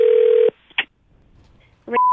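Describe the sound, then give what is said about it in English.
A steady telephone dial tone cuts off, followed by a couple of short, sharp dialing beeps separated by a quiet pause, then a new high, steady phone tone begins, as a radio prank call is placed to an indoor water park in the Poconos. No one speaks. “I decided it would be a good time to call one of the busier places in the Poconos, one of those indoor water park places.”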